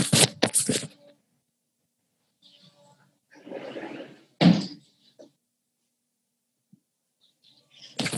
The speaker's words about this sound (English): I have trains going. Let me just close the door. 1 second.